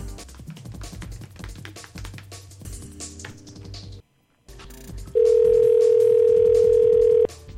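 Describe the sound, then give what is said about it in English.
Busy background sound cuts off abruptly into a brief silence as the phone is hung up, then a loud, steady, unbroken dial tone hums for about two seconds before stopping. “Well, if you're going to fart, I'm going to hang up.”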